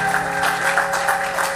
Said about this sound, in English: Let's celebrate Mommy with a clap offering too.